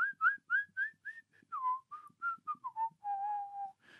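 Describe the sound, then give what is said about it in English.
A person whistles a bouncy, upbeat melody in a rapid run of short notes, rising and falling, then settles into a longer held note, clear with no talking. “Just chilling the fuck out, whistling, killing it.”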